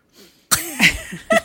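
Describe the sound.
A voice imitates heavy breathing through a mask into a microphone: a faint low huff, then a few loud, harsh, raspy breaths in quick succession, ending in a short sharp exhale.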